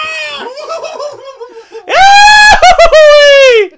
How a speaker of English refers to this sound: His scream. It's like Goofy's.